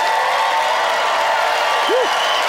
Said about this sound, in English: Audience, there you have it. It is up to you to pick a winner by applause